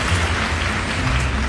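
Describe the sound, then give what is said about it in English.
A recorded applause sound effect: steady, dense applause from a crowd, a continuous crackle of many hands clapping at even loudness with no voices over it. “Oh, we're going to get this on. Applause.”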